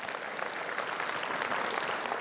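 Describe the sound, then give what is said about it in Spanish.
Steady audience applause for the Lord fills the space, a dense wash of many hands clapping at an even, sustained level with no voices standing out. “un aplauso al Señor que se lo merece, amén.”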